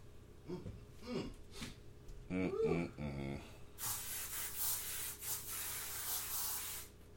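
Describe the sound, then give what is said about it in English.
A spray can hisses in one long, steady burst lasting several seconds, fairly loud, after a few moments of muffled voice sounds. “Yeah, I smell like shit and whatever else I spray.”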